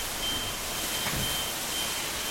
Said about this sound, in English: That is, ironically, a downpour. Is it set off an alarm or something? Yeah, the rain's that heavy, it's actually setting off alarms in the street.